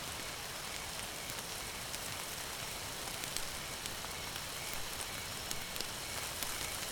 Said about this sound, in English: The fire slowly subsides, but the crackling from the embers keep you warm.